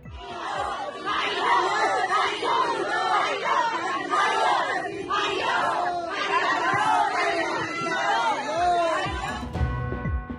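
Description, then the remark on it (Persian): A large crowd at the fourth-anniversary memorial, held with families seeking justice, for the Ukrainian airliner shot down by the Revolutionary Guards at Shahedshahr, Tehran, Iran. Many voices chant and shout loudly that the Islamic Republic is responsible, in rhythmic bursts rising and falling in unison with a steady, energetic cadence. “صدای حاضران در مراسم چهارمین سالگرد هواپیمای اوکراینی در ایران را شنیدید که در آن شرکت کنندگان نه تنها بار دیگر با صدای بلند یادآوری کردند جمهوری اسلامی مسئول مستقیم این جنایت است،”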